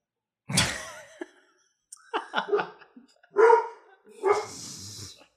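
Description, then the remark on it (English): A dog barks in a short, uneven series of sharp barks and yips, with brief pauses between bursts and no one talking over it. “See, even the dog doesn't like it.”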